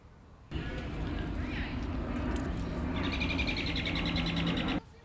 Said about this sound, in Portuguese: Neste parque nós também temos muitos pássaros ou passarinhos. Acho que é difícil de ver, mas tem vários pássaros aqui atrás de mim, comendo algo na grama.